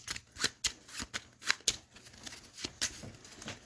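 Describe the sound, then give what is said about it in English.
A small stack of omen cards from a game being shuffled, with a series of crisp riffling snaps and soft papery flutters over a few seconds, no voices. “And I got 4 plus, so I'm going to shuffle the omen stack.”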